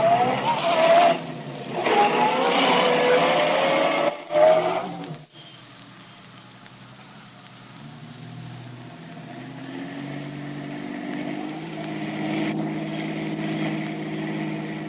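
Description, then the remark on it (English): A taxi cab engine revs and whines loudly at first, then settles into a low steady hum and idle, with heavy traffic rumbling around it. “Traffic sure is heavy today.”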